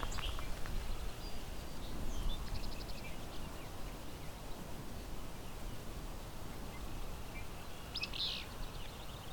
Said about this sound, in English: So I'm at Fine Mount Meadows Sanctuary, just east of Hamilton, Ontario. And I have a willow, there it is, willow flycatcher.